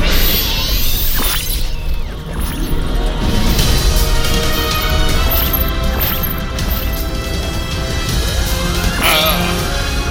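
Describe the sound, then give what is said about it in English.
Loud, dense action noise with several sweeping whooshes that rise and fall in pitch, mixed with crashing and smashing impacts, continuous throughout with no clear talking. “I hear a whoosh.”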